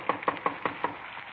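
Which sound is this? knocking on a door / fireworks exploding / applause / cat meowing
knocking on a door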